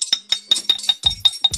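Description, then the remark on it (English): Glasses clink together in a toast, a quick run of about nine bright, ringing taps at a steady rhythm, fairly loud, with no voices. “And well, on that note, I'm gonna go ahead and do a little clink clink cheers.”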